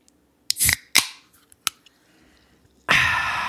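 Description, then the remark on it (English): A can of Mountain Dew being opened: a few sharp metallic clicks and a pop from the tab, followed by a steady, loud fizzing hiss of escaping carbonation that continues to the end. “You have not opened up your can of Mountain Dew.”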